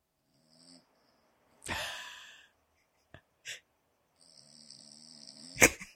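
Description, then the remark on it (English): A dog snoring, with a raspy snort, a few short puffs, and a thin whistling wheeze that ends in a sharp snuffle. “It's better with the visual, but this is some audio of him snoring.”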